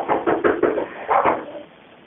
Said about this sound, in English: Nope, he's at the back patio door again. I can hear him banging again.